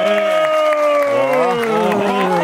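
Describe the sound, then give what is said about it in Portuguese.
A crowd applauds and cheers loudly for São Paulo governor Tarcísio de Freitas, sustained voices rising over a steady wash of clapping that carries on throughout without a break. “Palmas para Tarcísio de Freitas.”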